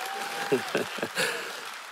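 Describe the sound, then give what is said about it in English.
An audience claps briefly for the preacher, a dense patter of hands with a few louder bursts, rising and then thinning out over about two seconds, with faint voices mixed in. “That's a good chance to say, that's a good preacher, clap.”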